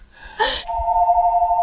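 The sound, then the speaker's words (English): A short burst of bright, noisy sound gives way to a steady, moderately loud electronic tone that holds one pitch, a phone ringing with a call coming in on the bat line, with no voices. “Someone calling the bat line. That's the bat phone, huh?”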